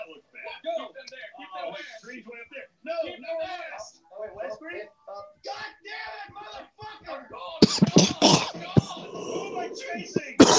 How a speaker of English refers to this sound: Did you forget to breathe again? No, that was just me coughing.